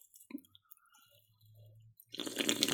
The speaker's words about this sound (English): okay, you'll open your lips to slurp a drink as loud as possible.